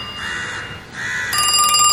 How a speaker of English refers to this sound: This country certainly has a lot of crows. Good morning, crows.